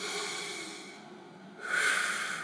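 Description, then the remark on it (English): Slow, deep breathing as a breathing practice: a long, airy exhale that gradually fades, followed by a louder, rushing inhale. No one speaks. “Practice breathing as you guide to practice breathing as a guide to be more aware of God's presence.”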